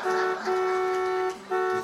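A truck horn honks three times, a short blast, then a long held one, then another short blast, loud with no talking.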